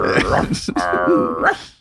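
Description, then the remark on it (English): A person imitates a British dog barking with a drawn-out, growly vocal bark lasting under two seconds, loud, broken by a brief catch partway through. “And then British dogs are like...”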